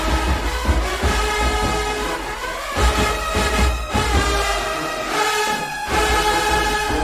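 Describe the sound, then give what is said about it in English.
A loud marching band plays with no talking, deep tuba notes pumping out a steady low rhythm beneath sustained, blaring brass chords that swell and hold throughout. “All right, come on, Tubas, I hear you.”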